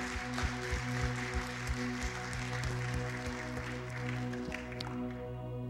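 An audience gives another round of applause to people who shared their testimonies, steady for several seconds, a dense wash of clapping with scattered sharper claps, while low sustained tones hum underneath and the clapping thins slightly near the end.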